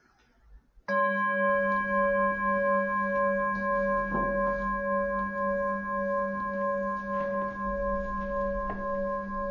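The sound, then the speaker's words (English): A bell is struck once and rings on with a steady, sustained tone, its layered overtones humming evenly and lingering through the remaining seconds with no other sounds. “Listen to the sound of the bell moving through time.”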